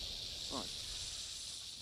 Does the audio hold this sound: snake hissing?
yes